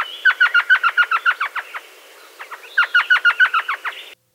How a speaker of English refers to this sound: This is what an elf owl sounds like.